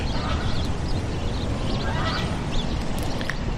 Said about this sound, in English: Oh, duck over on the left there.